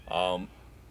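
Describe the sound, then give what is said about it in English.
One short, clear meow from a male cat, loud, with a slight downward slide at the end, heard alone over a faint background hum. “I heard that. What the fuck? He needs attention. Yeah. What the hell, Kitty?”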